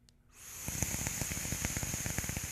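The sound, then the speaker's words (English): A Cloud Chasers Inc. vape device crackles and pops rapidly over a steady airy hiss that starts after a brief quiet moment and holds at an even, moderate level. No one speaks. “I am getting, I don't know if you can hear the crackle that's happening from these”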